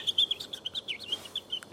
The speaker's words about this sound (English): That sounds like a nice trailer park, yo. That sounds like a nice bird to be in that area.